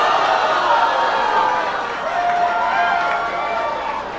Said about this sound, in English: You all booed Governor Inslee, and his campaign was forced to clarify his comments